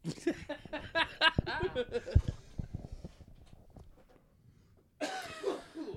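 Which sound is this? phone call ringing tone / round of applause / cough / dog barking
cough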